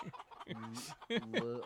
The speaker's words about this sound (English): Another chicken already.